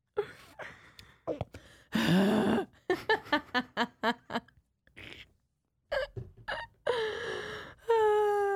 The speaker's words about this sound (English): Ooh, uh-oh, I have the hiccups.